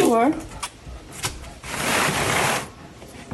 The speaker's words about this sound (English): Close the door.